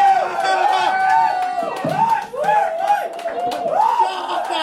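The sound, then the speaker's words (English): A live audience at a stand-up comedy set cheers loudly for a comedian, with overlapping shouts and rising whoops from many voices blending into a continuous, excited roar that swells and dips for several seconds. “What did I say about hot crowd, dude?”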